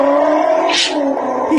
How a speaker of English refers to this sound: He's using the iron to spray steam. The best thing about that video is you can actually see his feet moving like he's doing the pedals in the car. Yeah, he's got a clutch foot and everything.